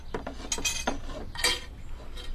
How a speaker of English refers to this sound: Please, get the cooking pot down off the shelf for me.